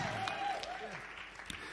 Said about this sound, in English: Somebody shout and give God the praise. Come on, clap Montana, clap Friedenburg, clap Krugersdorp, clap Brockenfell.